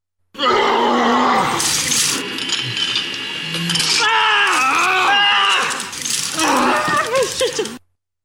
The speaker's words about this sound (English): This is the game where you try to match a famous power scream to both the climber and the route. Today's is from the year 2005 and involves a giant whipper that would have made anyone as mad as a snake. Let's listen.